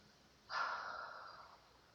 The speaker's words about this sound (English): And as you sit there, just take a couple of nice deep breaths, breathing in through the nose. And breathing slowly out through the mouth.